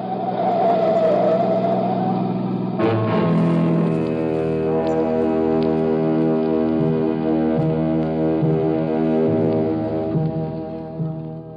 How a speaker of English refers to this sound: Alone at last on Pier 17, Hoboken, a banana boat was whistling hello to the USA. Ah, the Susie Q.